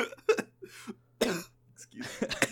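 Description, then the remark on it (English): A coughing fit brought on by coffee: several harsh, raspy coughs come in uneven bursts, ending in a rapid cluster of hacking coughs, with a faint low hum underneath. “Okay, that gave me a little coffee cough.”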